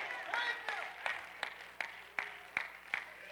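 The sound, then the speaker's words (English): An audience claps hands together in a steady, rhythmic beat, roughly three claps per second, clapping to tell God thank you, with a soft wash of voices murmuring underneath at moderate volume. “Clap your hand and tell God thank you.”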